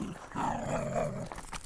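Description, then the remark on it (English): A female dog gives one drawn-out, growly bark lasting about a second, fairly loud, with no one talking over it. “It proves we've got an actual dog. I like her bark.”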